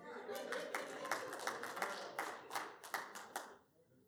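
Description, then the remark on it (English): A crowd claps in loose, scattered bursts over a steady murmur of voices, the sharp hand claps coming roughly every third of a second before dying away near the end. “Married man, you ought to clap.”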